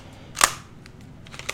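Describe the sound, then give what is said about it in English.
A sharp mechanical snap as the screen of a pre-iPhone phone designed by Andy Rubin at the company Danger swings open to reveal a QWERTY keyboard, followed a second later by a couple of softer, quicker clicks against a quiet background. “It's a great sound. But it opens up, and then you get this amazing keyboard, QWERTY keyboard and screen.”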